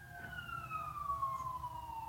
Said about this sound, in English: We're going to just pause for a moment as the siren passes. Hopefully it will. 3, 2. No, I'm going to wait till it goes away. Oh boy, it's loud.